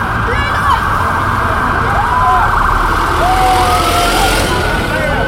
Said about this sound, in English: There's an ambulance coming through, which is making this very hazardous.